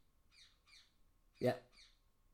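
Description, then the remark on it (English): A parakeet's alarm call: a few short, shrill chirps repeat at a steady pace, broken by one louder, harsher squawk in the middle, otherwise alone. “Sounds like a bloody bird alarm, doesn't it? One of the parakeets.”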